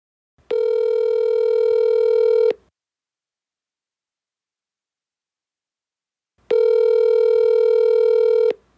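A telephone line tone sounds in two steady, loud buzzing bursts of about two seconds each, separated by a long silent pause, with no voices present.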